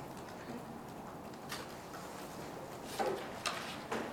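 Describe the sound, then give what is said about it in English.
A few dull knocks on a tabletop, spaced irregularly and then coming in a quicker cluster of three, fairly soft against a steady background hum with no voices. “I don't even know if that's wood, but I need to knock on wood for sure.”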